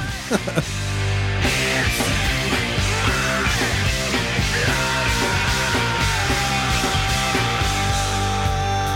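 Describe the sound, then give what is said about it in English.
A loud rock track with pounding drums and heavy guitars, where a raw, strained vocal scream tears through near the start and then stretches into a long held wail over the band. “Oh, that scream.”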